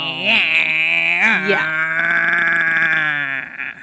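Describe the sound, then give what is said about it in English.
A voice imitates a chainsaw with a loud, buzzing sound made in the throat. It wobbles up and down for the first second and a half, then holds a long steady drone before trailing off. “How did you make that sound in your throat? I don't know. It just came naturally. Are you turning into a chainsaw?”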